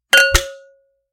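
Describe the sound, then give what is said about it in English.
Two quick metallic clinks of an empty can tapped against a drinking glass as a cheers toast, fairly loud, with a bright ringing tone that fades out over half a second. “And I guess I'm going to cheers by hitting the empty can against my glass, so...”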